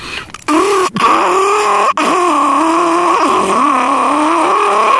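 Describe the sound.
A person vocally imitates a carbureted rally car engine, like a 1970s Lancia Stratos or Ford Escort Mexico: a loud, buzzy revving drone that rises and dips in pitch, broken twice early on by short gaps like gear changes.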